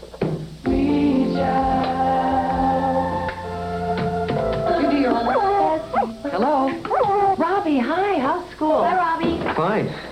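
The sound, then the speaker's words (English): A dog whimpers and whines to be let out, starting with a long steady whine that breaks into loud, wavering, yelping cries with short gaps between them, with no one talking. “you better let Higgins out before you have an accident. Amy, let the dog out, please”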